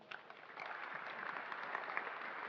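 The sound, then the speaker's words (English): An audience claps for some people in a steady, dense patter that swells slightly after the first half second and holds evenly for a couple of seconds, with no voices over it. “Clap for them.”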